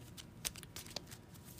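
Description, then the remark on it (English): A deck of cards being shuffled during a card game, a quick flurry of papery riffling with a couple of sharper snaps, fairly quiet and with no voices. “Shuffle, shuffle, shuffle, shuffle, shuffle, shuffle.”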